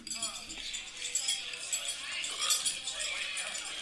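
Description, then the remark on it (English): A steady, busy clatter of clinking cutlery and dishes in a loud restaurant, bright and continuous, with a brief murmur of voices at the start and indistinct chatter running underneath throughout. “There's so many clinking utensils.”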